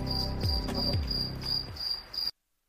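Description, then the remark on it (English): Steady crickets chirp in a continuous high-pitched pulsing trill, with a low rumbling hum and a couple of dull thumps beneath; the sound cuts off abruptly near the end. “And the crickets are in my brain as I'm eating.”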